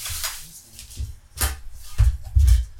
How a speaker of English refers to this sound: But I want to talk about this when the food came. Please excuse the ruffling of the plastic bags.